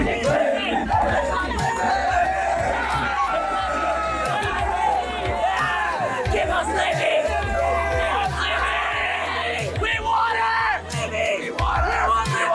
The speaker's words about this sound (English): That group of part of the future of America were screaming for Olivia Dunne, a gymnast at Louisiana State University.